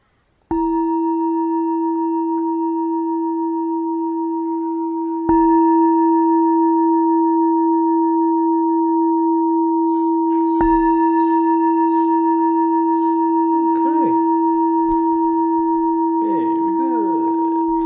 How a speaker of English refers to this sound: Okay, so I'll ring the gong 3 times, and please wait until the last ring of the gong to come out from your meditation.